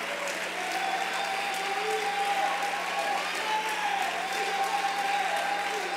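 A church audience claps their hands to the Lord in a steady, dense wash of applause that holds at an even loudness throughout, with a faint murmur of voices and a high tone running underneath.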